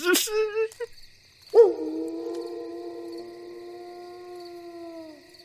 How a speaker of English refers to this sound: Of course I heard it. It was a loud howl coming from about 3 feet away.